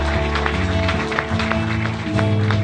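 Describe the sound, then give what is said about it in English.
A church audience applauds six people, a dense, steady patter of many hands clapping at once, layered over sustained low musical tones that hold and shift underneath. “Can we give a round of applause to those six people?”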